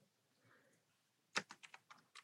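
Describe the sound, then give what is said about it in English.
A quick burst of computer keyboard typing as someone types in a song title: about eight crisp, clicky keystrokes in an uneven rhythm, following a moment of near silence with faint low background noise. “I'll type in the song.”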